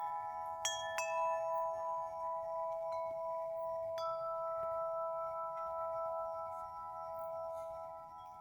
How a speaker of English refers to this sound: Then I will hit the chime, and you can listen to the chime for the duration of the sound in silence and relax.